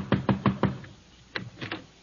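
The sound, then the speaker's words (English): Four firm knocks on a wooden front door in a quick even rhythm, a short pause, then three more knocks, fairly loud with no voices. “Knock on the door.”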